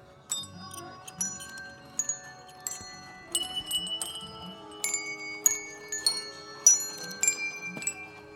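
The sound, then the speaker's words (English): Bells, an instrument being tested in a music store, are struck one after another in a loose, melodic pattern, each bright tone ringing out and overlapping the next. The ringing is moderately loud, with no voices. “Okay, here's the sound of bells.”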